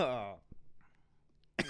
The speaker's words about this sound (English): Drink your water, bro. Hey, stop coughing in the mic. Oh, you know when you just pass saliva and it just goes down that wrong. That happened to that me. That wrong path.